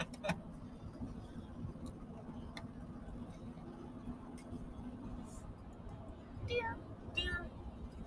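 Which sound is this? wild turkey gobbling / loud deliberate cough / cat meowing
cat meowing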